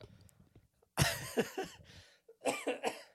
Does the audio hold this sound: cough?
yes